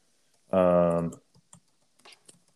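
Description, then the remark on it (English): A short, loud voiced sound gives way to a handful of faint, scattered clicks like keys tapped on a computer keyboard, sparse and irregular rather than steady typing. “Yeah, I was typing.”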